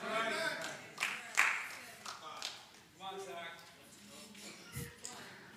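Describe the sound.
A few sharp, scattered hand claps ring out over a person talking, each one brief and crisp with uneven gaps between them.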